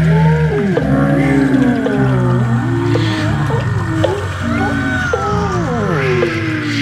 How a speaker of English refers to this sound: Yeah, so as you can hear from that, we called in some favours from some whales. Yeah, some plastic in there too. Yeah, and our old friend Wind.